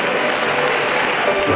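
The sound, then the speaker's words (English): A crowd claps their hands in a dense, steady wash of applause that stays loud and even throughout, with no clear voices rising above it. “Clap your hands for somebody.”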